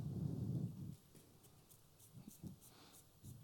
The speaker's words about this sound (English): The rain comes.